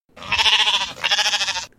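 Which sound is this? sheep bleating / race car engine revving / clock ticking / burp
sheep bleating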